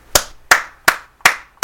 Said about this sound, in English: Hand claps for goddamn Terrence Crawford for coming out your cell and talking that shit.